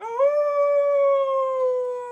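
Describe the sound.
A person imitates a wolf howl, holding one long, steady, rising-then-level tone for about two seconds, loud with no talking over it.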